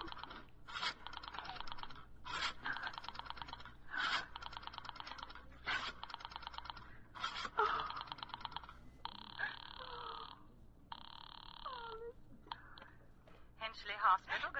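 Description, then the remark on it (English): A telephone being dialed: a series of quick rattling click bursts at a steady pace, followed by a couple of steady buzzing line tones, fairly clear. “Oh, for heaven's sake, I've no time to be dialing.”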